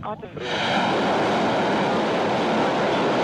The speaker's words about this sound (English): The engine starting to fire, ramping up.